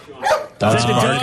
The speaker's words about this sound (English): The dogs are barking.